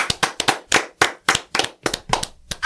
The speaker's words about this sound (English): Clap it up for my brother one more time.